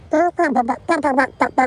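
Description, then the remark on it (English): A robot hen named Ben the Hen clucks in quick, voice-like bursts, two short runs of about four clucks each, fairly loud, with a synthetic, buzzy tone. “He's a hen, a robot hen, and he's here.”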